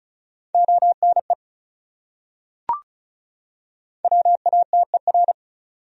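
A steady mid-pitched tone keyed rapidly into Morse code dots and dashes at 35 words per minute, sounding two quick words from a set of the top 100 words, separated by a pause with a single sharp click in between.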